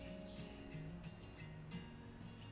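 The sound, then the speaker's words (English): Faint birds chirp, a few brief tweets scattered over a low, steady outdoor hum. No one speaks. “Just get the birds in the background.”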